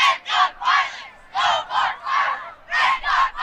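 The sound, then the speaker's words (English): A crowd of hundreds of students shouts a chant in loud, rhythmic bursts, two or three syllables at a time with short pauses between, over a low rumble of wind, at a school walkout protesting gun violence on a windy day in April. “The club organized a walkout to protest gun violence in April. It was a windy day, but hundreds of students still attended.”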